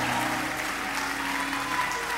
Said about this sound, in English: Give Jesus a clap of praise. God bless you, sir.